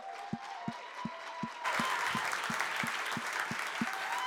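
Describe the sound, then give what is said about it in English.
A church audience at Zoe Church breaks into applause for the youth and young adult pastor, swelling to a fuller, louder wash of clapping partway through, with a steady low thump beating evenly underneath and a faint sustained tone. “And can you give a rounding applause”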